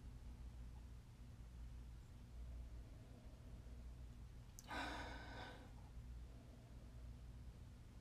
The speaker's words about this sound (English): So anyway, let's take a little sniff here.